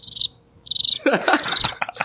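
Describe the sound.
A person imitates a cricket's chirp with high, rapid trilling bursts, two short pulsing runs followed by a rougher, more breathy stretch where the mouth-made quality is more audible. Fairly loud.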